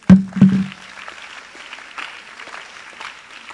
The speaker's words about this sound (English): Oh, keep on clapping, keep on clapping, keep on clapping, keep on clapping.